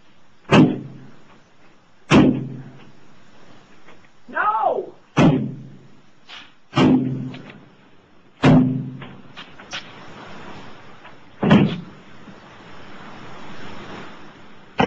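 A woman in a hotel room bangs a chair hard against the window again and again, trying to break it: roughly seven loud blows at uneven intervals, over a steady roaring background with a brief vocal cry between strikes.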